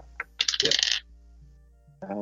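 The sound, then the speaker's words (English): Dice rolled for an intimidation check in a tabletop role-playing game, totalling 19, roll and clatter in a quick, bright rattling burst lasting about half a second, with small clicking taps as they settle. A voice starts speaking shortly after. “Roll high.”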